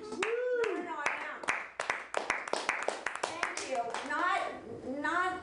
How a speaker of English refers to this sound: Hey, she's a new comedian, so be nice. Pay attention, take notes, and clap wildly for